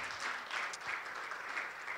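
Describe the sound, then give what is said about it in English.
A church audience applauds the older children as they leave, many hands clapping at once in a dense, continuous patter without any voices standing out. “Let's just clap for them, even as they go.”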